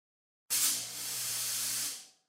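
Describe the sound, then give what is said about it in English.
A fog machine sprays with a sudden, loud burst of steady hissing that holds for about a second and a half, then tapers off quickly, with no voices. “Hit the fog machines.”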